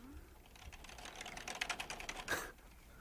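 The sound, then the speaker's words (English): Rapid, continuous clicking of keys on a computer keyboard, a steady stream of taps with one sharper clack near the end, and no voices. “So you added in all the sound effects later of her typing constantly, right?”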